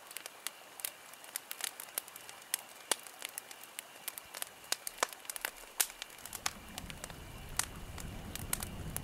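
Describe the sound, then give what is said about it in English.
A campfire by a creek crackles steadily, with many sharp, irregular pops and snaps over a soft hiss. About two-thirds of the way through, the low rumble of an oncoming train rises beneath the crackling. “A Campfire and Train Ride”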